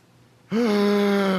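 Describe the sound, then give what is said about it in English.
After a brief silence, a voice imitates the gasping breath of a dying man who breathes again after about 20 seconds without breathing: one sudden, loud, strained vocalized gasp that holds for about a second. “And then he'll take a breath, and he won't breathe for 20 seconds.”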